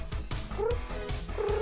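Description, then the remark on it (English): A female cat, which hardly ever meows, makes gurgling purr-like trills: a steady rumbling throb with two short rising chirps breaking through, one midway and one at the end. No one talks. “She speaks in like kind of gurgle purrs. Hardly ever a meow, but just purrs and just, oh, she's so cute.”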